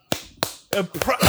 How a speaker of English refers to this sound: He's applauding me. He's applauding me for remembering.